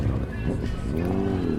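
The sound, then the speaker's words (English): A car engine hums steadily as it drives on the ice of a frozen lake, its pitch climbing slightly toward the end as it revs, with faint outdoor rumble and possible murmuring voices in the background. “And still some cars on the ice, which I thought was a no-no.”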